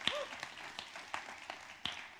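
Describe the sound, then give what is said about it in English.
A church audience claps steadily for one another at the pastor's urging, a dense wash of many hands with a few sharper individual claps standing out, and a brief high whoop near the start. “Clap for the person beside you for that.”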